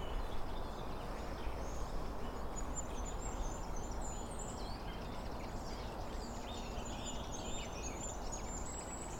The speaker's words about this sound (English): Yeah, that's a goldcrest.